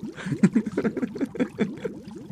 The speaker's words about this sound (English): Hey, although maybe the fish will be soothing. I don't know. Maybe it will. And in the background, you hear a soothing sound. A babbling brook of sorts.